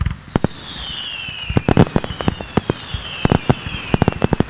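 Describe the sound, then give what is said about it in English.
Fireworks exploding in rapid, irregular bursts, with sharp cracks and pops over a steady crackling background and a few whistling rockets sliding downward in pitch, loud. “So let's head it off with some more fireworks, I think.”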